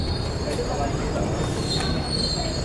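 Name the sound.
subway train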